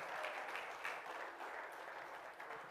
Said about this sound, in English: Oh, let's clap our hands and praise Him this morning. He is worthy of that today.